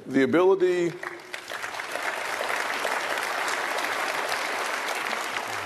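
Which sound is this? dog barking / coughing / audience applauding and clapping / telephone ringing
audience applauding and clapping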